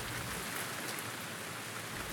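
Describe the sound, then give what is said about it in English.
Steady rain falls continuously, a dense even hiss of drops pattering on a surface, moderately loud with no pauses or voices. “Me, I like to stand in the rain and get all wet.”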